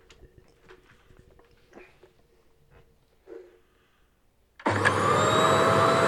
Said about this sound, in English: I think it is a vacuum. A vacuum.